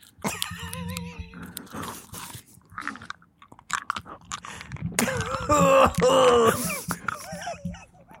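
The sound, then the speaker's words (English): Loud mouth sounds of someone crunching and chewing a hard Ricola cough drop, with irregular wet clicks and bites that grow denser and louder toward the end, plus a few soft throaty noises. “I brought you a Ricola. And I'm going to put this in my mouth for you.”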